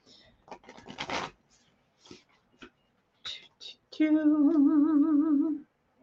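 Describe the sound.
A deck of moon cards is shuffled in a brief burst of papery riffling and rustling, followed by a few soft scattered taps, then a voice hums a sustained, wavering note near the end.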